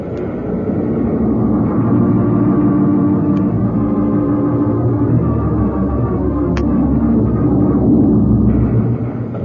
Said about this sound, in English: Does it seem to you that those explosions are getting closer? They are. There's no question about it. We've been going deeper into the tunnel. They should be getting fainter.